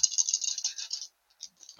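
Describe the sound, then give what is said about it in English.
Dice being rerolled rattle and clatter in a quick, bright burst for about a second, then a few lighter clicks as they settle, ending with a soft thump; the reroll comes up 12. “I rerolled it and got a 12.”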